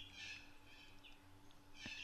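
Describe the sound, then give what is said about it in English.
Harsh, screeching cockatoo calls drift in from outside through an open laundry door, two louder squawks with fainter chatter between them, over a low steady background hum. “Cockies or something. We've got the door open of Dee Dee's laundry where we do this.”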